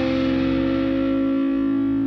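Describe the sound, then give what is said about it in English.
A heavily distorted electric guitar sustains a loud, thick note, bent slightly in pitch and ringing steadily with no talking, fuzzy overtones filling out the sound. “See, do that bend again, even with thick-ass distortion.”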